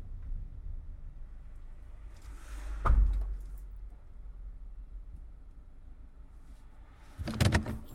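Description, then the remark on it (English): A low idling truck engine rumbles at the side of the road, then a heavy thud as the driver turns it off, followed by a quiet stretch and a sharp clunk of the cab door opening near the end. “Turns the truck off. Opens the cab and steps outside.”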